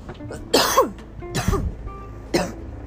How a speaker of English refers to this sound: And cough.